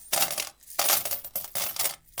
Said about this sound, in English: The judge turned to the baker and asked, "Did you hear the jingle of the gold coins?" "Yes, it is a wonderful sound.